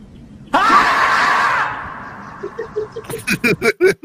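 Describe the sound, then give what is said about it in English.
A loud, sustained yell rings out, then trails off into a reverberant tail followed by a series of repeating bursts, an echo dubbed into a video's audio to sound like an echo in the mountains. “So, like, if you notice when he yells, there's an echo like in the mountains.”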